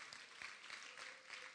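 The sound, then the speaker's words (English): An audience claps steadily as a hand clap of praise to God, in a dense, continuous wash of applause, many hands overlapping with a few sharper individual claps standing out, and no voices over it. “Can somebody give God a hand clap of praise in the house?”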